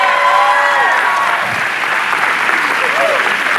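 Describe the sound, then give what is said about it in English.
A church audience breaks into steady, loud applause during a sermon, after the preacher mentions his 23-year marriage, a dense wash of clapping that holds evenly throughout, with a few scattered voices and whoops rising above it. “Thank you very much, and yeah, you should clap.”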